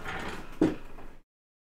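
A door rolls and shuts with a single dull thud partway through, set against a steady rushing background that cuts off abruptly into silence.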